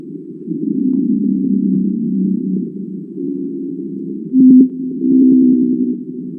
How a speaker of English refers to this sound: And then mm-hmm. here's a blue whale in the South Pacific, which is where these sounds are coming from.